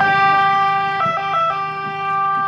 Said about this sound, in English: When it arrives in the first village, its sirens ring out to tell everyone they're here.